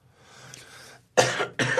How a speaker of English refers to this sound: Oh, great. Just coughed out my cough drop in my shirt.